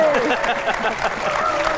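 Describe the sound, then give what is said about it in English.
A studio audience claps steadily in a dense, continuous patter, greeting Jim Sturgess as he comes on, with faint voices and a brief whistle-like tone mixed into the applause. “Oh, now the applause has faded, Jim, before you got your seat.”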